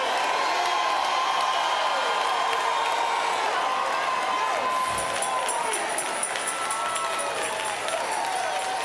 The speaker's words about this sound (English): Now give the Lord a shout.